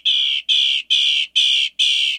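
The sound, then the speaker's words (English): A northern mockingbird sings five loud, harsh, raspy notes in a steady, evenly spaced series, each about the same length, with no other sounds or voices around them. “Within its range in the U.S., which is most of the country except the northern west and midwest, you'll recognize the mockingbird song instantly.”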